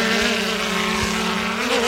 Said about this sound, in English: The recruits are practicing while being monitored by two surveillance drones.